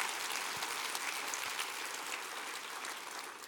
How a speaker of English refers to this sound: Come on, clap your hands and rejoice in that.